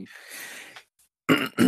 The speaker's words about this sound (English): Let me clear my throat.